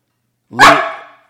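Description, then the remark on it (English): A single loud bark from the dog Ben, on the lookout for coyotes in the morning, rings out sharply and then trails off quickly, with silence before it and no one talking. “Stop barking like that, Ben.”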